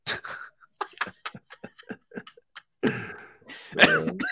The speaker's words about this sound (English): Oh, no, the COVID cough is going to kill me. Dude, you're a long hauler, aren't you? I think that's what they call it. We're a month in on this COVID cough, so we'll see. Usually it goes away within a couple months